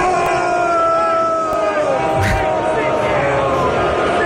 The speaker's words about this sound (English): So it's just an entire stadium of people looking up at the screen and booing her,